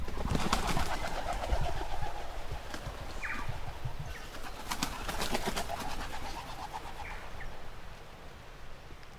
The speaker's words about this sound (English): One time Tim was recording down south and had just turned his recorder on when this whole tree of native wood pigeons took off.